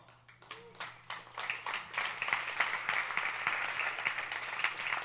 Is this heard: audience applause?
yes